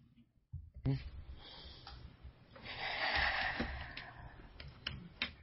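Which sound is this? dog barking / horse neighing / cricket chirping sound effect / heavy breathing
heavy breathing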